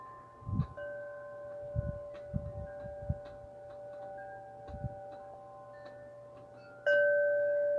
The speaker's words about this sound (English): And there's a gentle wind blowing, so you can hear the wind chimes very gently, which is nice.